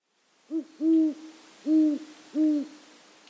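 A great horned owl hoots four times in a deep, resonant series, a short first note followed by three longer ones, heard clearly on its own against a quiet background.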